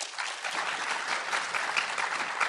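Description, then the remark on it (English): An audience claps steadily for a couple of seconds, voting by applause on whether a claim about world populations stabilizing around 2050 is fiction, a dense, even patter of many hands at moderate volume with no voices standing out. “Okay, if you think that world populations will stabilize around 2050 is the fiction, applaud.”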